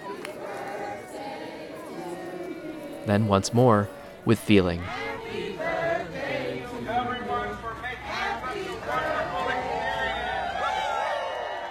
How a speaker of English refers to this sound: At one point, the crowd spontaneously broke into song.